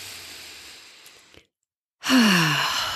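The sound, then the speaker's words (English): A slow, airy inhale fades out, followed by a brief pause of silence, then a louder, breathy exhale with a slight voiced sigh, with no talking. “Take a deep breath with me, will you?”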